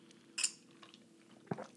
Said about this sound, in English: And it's so funny because wait, y'all, because I gotta take a sip for this one.